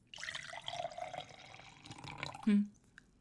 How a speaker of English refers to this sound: Now pour me a glass as commanded.